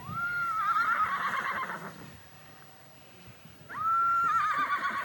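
One of Edgington's horses, bleeding from a leg wound, whinnies twice, each call rising sharply and then shaking into a wavering, vibrato-like neigh, loud, with a brief quieter gap between the two calls.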